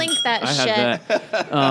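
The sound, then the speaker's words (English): Glasses clink together in a toast, a bright ringing tap set against voices talking and laughing. “Cheers to that.”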